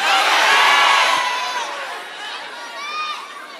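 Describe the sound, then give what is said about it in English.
A church audience shouts their favorite fast food places for chicken, such as Chick-fil-A and Popeyes, all at once in a loud, jumbled burst of overlapping voices that gradually tapers off, leaving a few scattered voices calling out at the end. “I heard a whole lot of tongues.”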